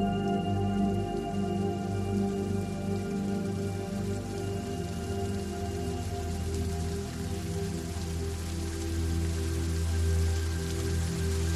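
rain falling

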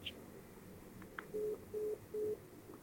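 phone tone

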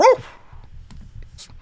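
dog barking

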